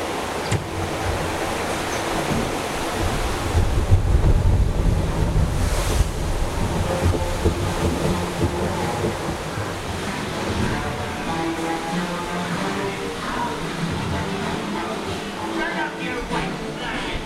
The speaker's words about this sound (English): Ooh, here comes the waterfall.